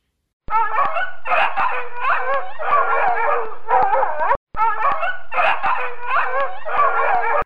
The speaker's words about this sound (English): It's a dog. Can you be a dog with me? Woof, woof.